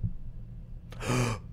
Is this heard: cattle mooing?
no